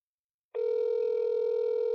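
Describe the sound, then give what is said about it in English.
After a brief silence, a steady electronic ringback tone from an outgoing phone call to a woman who is not answering sounds over a speakerphone, one continuous buzzing ring held to the end, fairly loud and with no talking. “She probably not answering because she don't got that number.”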